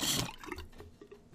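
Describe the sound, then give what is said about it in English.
Water bubbles and gurgles in a bong holding too much water, opening with a brief rushing burst and then a few low, irregular blub-blub pops that trail off. No one speaks. “So there's too much water in that bong.”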